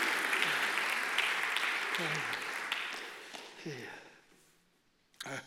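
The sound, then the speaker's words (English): An audience claps in praise of God in a dense, steady wash of applause with voices calling out beneath it. The clapping thins and fades over a few seconds, then a short louder burst comes at the end. “If you've ever heard him when you couldn't see him, give him a clap of praise right now and bless his name.”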